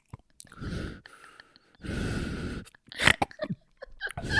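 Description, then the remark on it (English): A voice imitates breathing into a drinking glass held tilted at the mouth: two long, hollow, resonant breaths, followed by a few short clicky, breathy puffs. No words are spoken. “She's breathing into the glass and you can hear it like it's inside your own head and just sits there with the glass just tilted.”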